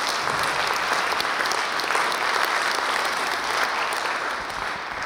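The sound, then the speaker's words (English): A large group claps steadily and loudly throughout, giving the Lord a round of applause for close to 50 baptisms in 2019 and around 12 scheduled for next week; a dense, continuous wash of applause with no voices standing out, easing only slightly at the very end. “I want you to give the Lord a round of applause for that.”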